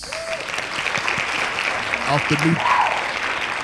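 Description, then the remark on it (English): Loud, dense hand clapping from many people, a steady wash of claps that holds throughout, with faint voices and cheers mixed underneath. “Hand claps.”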